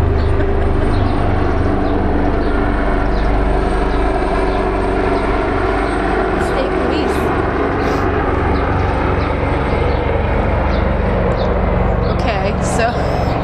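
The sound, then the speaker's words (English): A police helicopter circling overhead in Fishtown, its loud, steady mechanical drone filling the whole stretch, a deep continuous rumble with a low humming tone that never lets up. “It's definitely a police helicopter.”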